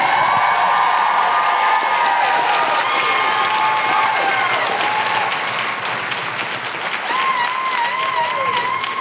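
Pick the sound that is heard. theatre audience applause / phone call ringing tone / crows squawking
theatre audience applause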